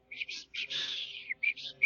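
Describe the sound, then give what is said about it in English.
A voice imitates a watchman blowing his whistle while chasing someone, with shrill, high-pitched toots: a few short blasts, one long drawn-out shriek, then more quick bursts, fairly loud. “The watch guy is chasing and whistling his whistle.”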